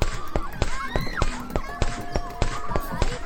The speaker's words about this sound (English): You can hear the footsteps on the ground, and as I entered a new object, the long ramp, you could hear the sounds change.